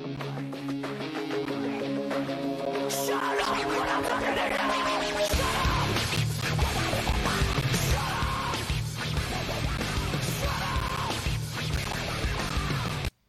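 A heavy rock song by a band, from their debut album, plays loudly. It opens with a droning intro before slamming into dense, distorted guitars and pounding low end, with harsh screamed vocals riding over the wall of sound.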